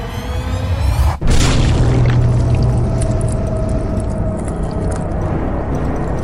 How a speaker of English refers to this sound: There's a crunch and a squelch and a splattering of blood as this tiefling vanishes between the palms of this giant. Then all is silent, save for a few buzzing flies.